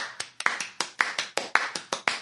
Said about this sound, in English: I'll give it a clap, too. I tip my hat to you. I give you a standing ovation.